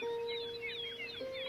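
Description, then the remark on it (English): Many young birds chirping for their mother, rapid high overlapping peeps, a steady stream of calls held over a constant low hum, fairly soft and with no one talking. “That's those young birds chirping for their mama that's never coming back.”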